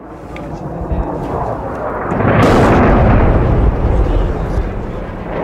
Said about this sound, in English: Hardly a minute goes past when there isn't an explosion in the city or the sound of warplanes above us.